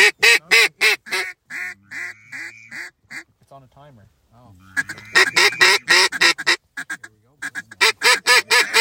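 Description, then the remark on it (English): A flock of about 15 ducks coming in quacks in loud, rapid bursts, falling quiet briefly in the middle before the calling swells again, with a man's voice speaking low beneath, in a good wind. “Nice flock of ducks coming in.”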